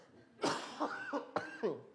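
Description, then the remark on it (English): A big, phlegmy cough from a person with a little phlegm from a cold, a harsh hacking burst followed by a few rougher chesty heaves, loud and clear with no talking. “But if you allow me, just one big cough.”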